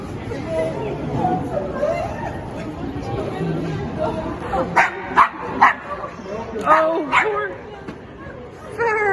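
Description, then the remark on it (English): An excited dog named Farah barks and yips in a quick series of sharp, high calls at San Francisco Airport, mixed with a busy murmur of several people talking and greeting each other. “And when we first saw them, and you'll see the dog, Farah.”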